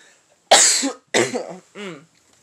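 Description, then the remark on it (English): Three loud coughs in quick succession, the first sharp and strongest, the last softer and more voiced, with quiet pauses between them. “And sorry if I cough.”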